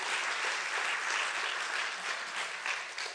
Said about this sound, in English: Give God another big hand clap.